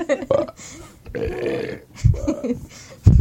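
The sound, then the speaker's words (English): A person lets out a loud, drawn-out burp, mimicking the burping call of a blue Ceresian burping lemur, framed by a few shorter guttural vocal bursts. “gives us a requisition for the supply sergeant to resupply us and to get my blue Ceresian burping lemur.”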